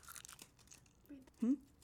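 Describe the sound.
Crisp, crackly crinkling of a Botan rice candy wrapper for about half a second as people eat the candy, followed by a brief voiced sound from someone.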